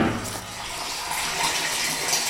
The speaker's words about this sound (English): What you hear is water flowing into this 36-inch culvert. And then it's going out a 2-inch line you see on the other side.